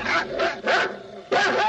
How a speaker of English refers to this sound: barking again and getting on my nerves again.